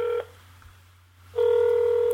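Electronic ringback tone of an outgoing phone call: a loud, steady buzzing tone cuts off briefly, pauses for about a second, then resumes, heard alone through the line.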